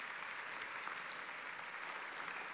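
An audience claps steadily, a dense, even wash of many hands with no voices over it. A single sharper clap stands out briefly near the start.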